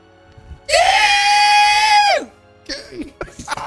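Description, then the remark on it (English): A voice imitates the horrific, blood-curdling screech of baby owlbears making a screeching advance: one loud, sustained, piercing shriek lasting over a second that drops away at the end, followed by a few moments of talking. “And it makes a horrific, blood-curdling screech that sounds like something.”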